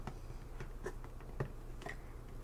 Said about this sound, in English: Okay, so first, to make the haircut a little bit easier, I am gonna just dampen your hair a little bit, okay? I just have this spray bottle, just has water in it, a couple essential oils to smell nice. Lavender, mint.